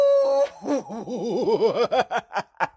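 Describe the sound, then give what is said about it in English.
A person howls like a wolf: a held vocal note that breaks into a loud, warbling wobble, then trails off in short choppy yelps. “That's like the howl of a crazy person, which I am.”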